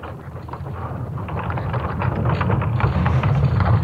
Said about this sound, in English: And finally, I have the sound of what the Earth's magnetic field sounds like, and it's terrifying. Okay, you ready to hear this? Yeah, I'm ready. This is the Earth's magnetic field.